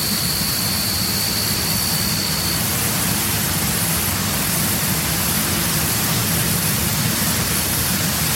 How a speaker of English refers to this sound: So he's saying here, crickets, grasshoppers, wind in trees, rushes, jet plane, flying insect, unknown bird. And in a way, that does kind of define the sounds of that watershed